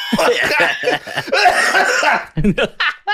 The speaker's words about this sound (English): Give me a cigarette. I'll smoke a cigarette right now. Like, coughing.